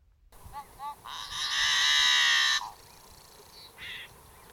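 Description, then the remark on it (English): A yellow-headed blackbird's snarl song: a few short, clear introductory notes, then a long, loud, harsh buzzing rasp lasting over a second, followed by a brief buzzy note. A single bird, without talking. “And here's an example of the snarl song.”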